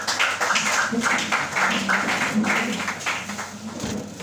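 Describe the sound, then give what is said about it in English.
An audience at a church service claps for grace after a prayer, a dense, steady wash of hand claps that holds at an even loudness throughout, with murmuring voices mixed in underneath. “Be seated and clap on for grace.”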